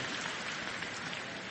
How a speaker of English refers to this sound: Teammate and designated hitter, Jim Thome. Big round of applause for Big Jim.